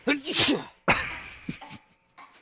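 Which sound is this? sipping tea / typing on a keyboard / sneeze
sneeze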